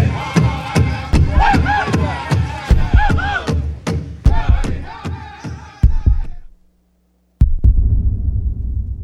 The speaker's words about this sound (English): The drum, it is a symbol of the heartbeat of Mother Earth. It's a symbol of the heartbeat of each and every one of us. So it is very powerful. It's healing.